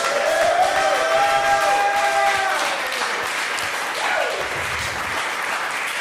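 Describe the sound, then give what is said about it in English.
A live evening audience claps steadily and loudly for several seconds for Anna Fabrega and Julio Torres, a dense wash of applause with a few high whistles and cheers rising over it early on. “Could we hear it once again for Anna Fabrega and Julio Torres, please?”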